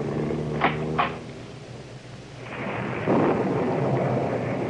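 Steady rain hisses throughout while a deep roll of thunder swells up in the second half, rumbling broadly. A couple of brief knocks sound early on; no one speaks.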